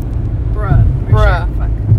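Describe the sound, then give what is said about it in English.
A steady, low car engine rumble runs throughout, while a voice makes two short swooping, pitch-bending sounds over it, imitating a car whooshing by. “Ooh, that car goes swoop.”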